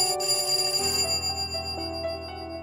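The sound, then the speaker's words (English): A bright electronic bell chime rings out clearly, holding one tone and then dropping to a lower sustained note, like a two-tone doorbell, rung by police and Dr. Baker at Mary Mallon's door, with no voices present. “They rang the bell.”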